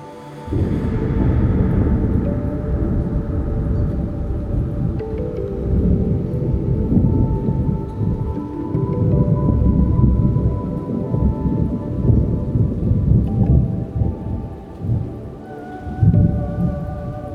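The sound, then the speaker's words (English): Deep, rolling thunder rumbles continuously through a steady rainstorm, drawing a little closer, low and heavy, with a few louder swells near the end over the constant hiss of falling rain. “Rumbling thunder draws a little closer, reverberating with the beautiful flashes of light.”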